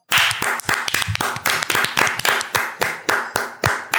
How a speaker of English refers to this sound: We're doing it on clap. Well, 3, 2, 1.